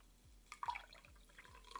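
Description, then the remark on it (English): Chocolate-flavoured soda pours into a glass in a quiet stream, with soft splashing and a few bright drips trickling off at the end. No one speaks. “So let's do half chocolate here. We'll pour a little less in this one here.”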